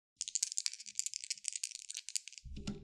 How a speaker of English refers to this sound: why don't you roll a percentile roll? Okay. So 2d10s.